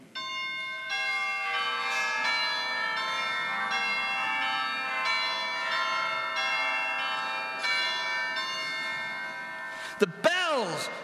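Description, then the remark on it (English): Several ancient church bells peal together in a full, ringing wash of overlapping tones that sustains steadily, then a bright swooping chime briefly rises near the end. “The ancient bells were singing. After all those silent years, they were finally ringing.”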